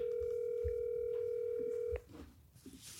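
A phone line hums with a steady ringback tone for about two seconds, then cuts off with a click into quiet line noise as the call connects.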